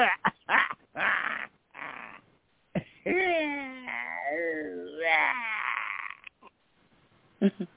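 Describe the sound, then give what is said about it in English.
A few sharp barks, then a long, wavering growl and whine, fairly loud; it sounds like a person's voice imitating a dog rather than a real animal. “Where is it? Where's the dog?”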